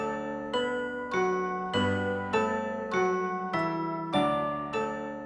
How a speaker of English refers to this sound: Yeah, the chimes, like we went and watched the movie, so... Here are some chimes.